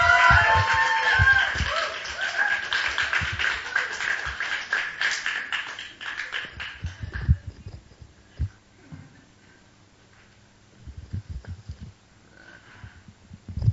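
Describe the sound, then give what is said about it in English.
An audience breaks into dense, loud applause with a few cheers as Pastor John Neufeld of New Philadelphia Church is welcomed at a large group gathering at SNU. It fades after about six seconds into scattered claps and light shuffling and tapping. “And so please give a warm round of applause to Pastor John Neufeld.”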